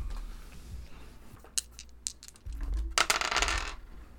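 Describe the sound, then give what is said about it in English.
Dice clatter and tumble across a hard tabletop in a quick burst of sharp clicks, followed by a louder rattling roll before settling, fairly quiet with no talking; the dice are rolled for an education roll in a game. “give me an education roll. Yes. I haven't even taken my dice out this last game.”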